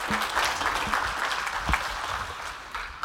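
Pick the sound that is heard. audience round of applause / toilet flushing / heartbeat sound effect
audience round of applause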